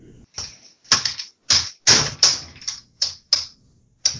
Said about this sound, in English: What is going on over there? Are you, like, destroying a keyboard?